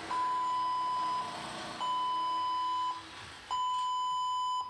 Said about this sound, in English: Why do... is my PC... alarm? What is it? Beeping? What? Yeah, well, it sounds like an alarm. Shutting down. Problem on your motherboard.